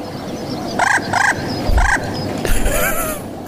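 A homing pigeon calls: three short, tonal, harmonic notes in quick succession, then a longer wavering call that slides downward, moderately loud over a soft background hiss, with no talking.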